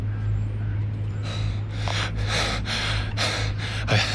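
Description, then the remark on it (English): Heavy, rapid breathing from a man, bent over after running along an old footpath in a park: about six loud, breathy huffs in a steady panting rhythm, over a constant low hum. No one speaks. “…'s bent over, breathing hard.”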